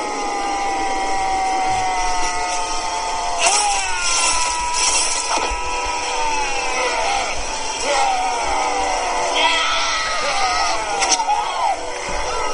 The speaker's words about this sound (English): So this is the 18-second yell. This is the 18-second yell from the final fight scene. And here we go.